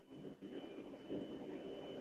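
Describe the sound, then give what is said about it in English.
A steady low engine drone with a constant roar from inside an airplane cabin, heard over a thin phone line from a caller on a plane, with no one speaking. “Apparently he's on a plane.”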